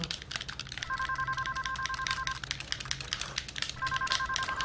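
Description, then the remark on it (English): A telephone rings twice with a steady electronic two-tone trill, each ring lasting over a second, over a busy background of soft clicking and clatter. No one speaks. “What is that ringing?”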